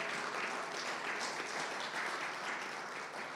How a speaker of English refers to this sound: Can we clap our hand for the word of God?